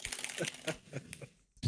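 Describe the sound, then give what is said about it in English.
Rapid keyboard typing, a burst of crisp, uneven clacks that trail off into a brief pause before a final few keystrokes, meant as Michael Bay typing away in his house. “Like, because I know there's like Michael Bay in his house somewhere typing away, just clacking.”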